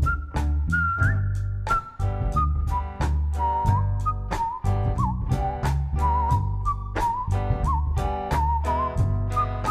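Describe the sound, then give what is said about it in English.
A person whistles a steady, wandering song melody over a full band backing with drums and bass, the tune carrying clearly above the music for the whole stretch. “I'm gonna whistle that part.”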